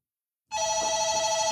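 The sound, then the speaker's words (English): A telephone starts ringing abruptly after a brief silence, a call from the front desk: a steady, bright electronic trill with strong harmonic tones, fairly loud, continuing without pause and no voices. “have been talking for about an hour and a half when the front desk phones.”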